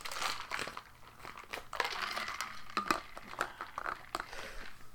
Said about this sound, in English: I did eat that ice cream right before I recorded this, so my throat is a little mucousy. Whoops. I'll take a drink of water here.